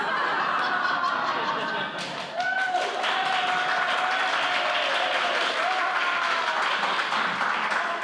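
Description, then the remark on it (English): Steady audience applause at the first performance of the Sonic Summerstock Playhouse 2019, a dense crackle of many hands clapping that holds loud for the full eight seconds, with faint cheers and scattered crowd voices mixed in. “Hold all the applause for the next 30 seconds.”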